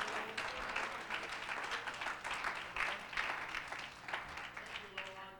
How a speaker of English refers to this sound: If you're thankful for the promise, give the Lord a hand clap of praise.